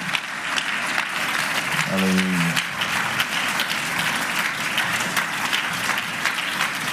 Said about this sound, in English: Man, give the Lord a hand clap of praise this evening.